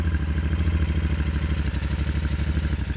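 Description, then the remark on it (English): A Honda-matic motorcycle with no clutch and two speeds, bought new in 1978, is started; its engine runs with a steady, rapid low putter, its rhythmic chugging loud and even throughout with no voices. “started the motorcycle”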